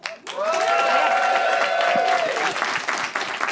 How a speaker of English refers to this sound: People only applauded that because I gestured. It was under duress.